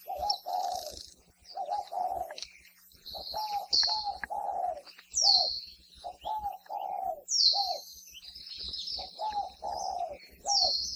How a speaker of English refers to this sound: If you live in any urban or rural area across Hawaii, you likely have spotted doves living nearby and can hear their various types of coos throughout the day.